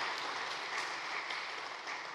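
A church audience applauds a youth group member who made artwork from her study of a scripture passage, many hands clapping in a dense, steady wash of sound that holds at an even, fairly loud level throughout, with no voices over it.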